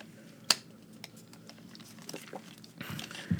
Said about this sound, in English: He's having issues now opening up the piece of paper.